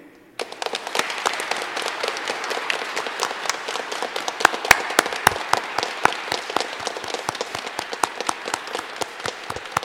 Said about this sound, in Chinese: 让我们以热烈的掌声接纳并祝贺他们成为本堂区的圣言宣读员。